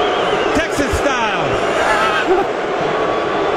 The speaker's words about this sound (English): Who's being booed there? That is NFL Commissioner Roger Goodell. And you can actually hear in that clip the moment that he becomes visible on stage. Somebody hits the boo switch and the audience just simultaneously just boo.